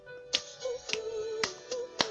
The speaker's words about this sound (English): We can clap.